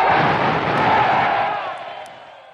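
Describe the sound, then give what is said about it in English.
A large crowd cheers and applauds loudly in response to a speech calling for the creation of an organization, a dense, roaring wash of clapping and voices that holds steady, then gradually fades toward the end. “Anyway, his call for the creation of this organization was met with cheers and applause”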